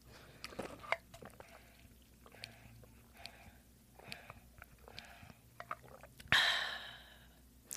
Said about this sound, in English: Let me drink some water. Water break.